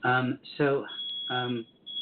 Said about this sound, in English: There's a little alarm going off somewhere in the house. I don't know what's happening, but my wife is taking care of it.